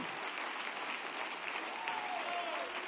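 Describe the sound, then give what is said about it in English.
An audience claps together in a dense, steady wash of applause that fills the space, with a faint tonal sweep drifting through the middle of the sound. “Somebody clap your hands if you made up your mind.”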